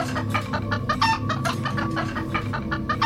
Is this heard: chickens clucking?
yes